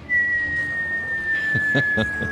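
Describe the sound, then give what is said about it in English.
A single slide whistle tone glides slowly and steadily downward in pitch, held as one long continuous note, with a few faint muffled background noises near the end. “Just a slide whistle. A real slow slide whistle.”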